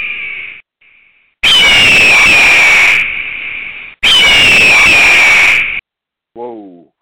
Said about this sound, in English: try to turn up the volume a little bit on the eagle screech and turn it into like a robot eagle. So I'll try to turn it down a bit next time.